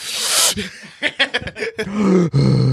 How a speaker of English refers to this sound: why say, are you breathing so hard? Dang, all y'all out of it breath